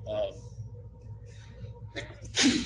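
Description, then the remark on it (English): A single sharp sneeze bursts out near the end, loud, following a brief indrawn breath, with low murmuring background noise underneath. “Bless you.”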